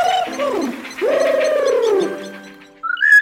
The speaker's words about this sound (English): You know, the rufous treepie is part of the crow family and lives in South and Southeast Asia. It's got a long tail, it eats seeds, fruit, and...